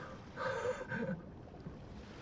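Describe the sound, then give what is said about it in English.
A faint wash of ocean waves swells briefly and then fades back into a low, steady background hiss, with no one talking. “I can hear the ocean.”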